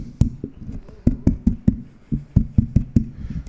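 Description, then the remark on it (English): Loud knocking by a police officer on a car window late at night: two rapid, rhythmic bursts of about a dozen sharp raps in all, with a brief pause between them and no one speaking. “And that's the last thing I remember until I just hear a knock, right?”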